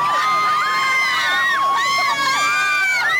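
A dense crowd of an estimated 5,000 fans lining the street outside a theater in Westwood screams and shrieks continuously, many high-pitched voices overlapping in rising and falling wails, loud and sustained throughout without pause.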